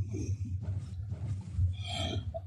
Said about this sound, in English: Gesundheit.